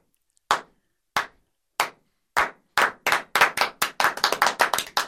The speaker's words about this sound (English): I'm like the crowd at the Olympic Games doing a slow clap, and I'm going to build up to the intro.